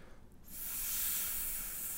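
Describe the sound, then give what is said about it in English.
A person does the 'gay snake' impression from an old Zach Galifianakis special, one long, steady hiss that begins after a brief pause and holds for about a second and a half. It is fairly soft, with no talking. “He does an impression I'm pretty good at. It's a gay snake.”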